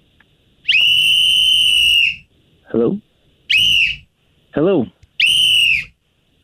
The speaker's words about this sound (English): You like blowing whistles, so I decided before I call you, I'd get my own whistle.